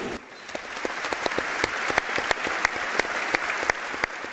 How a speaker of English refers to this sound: Both will be sadly missed, and we will now honour their lives with a minute's applause. Thank you.